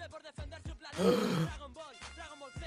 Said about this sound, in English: Ah, well, I've been deceiving you this whole time. I've never read Dragon Ball. So you guys gotta gasp.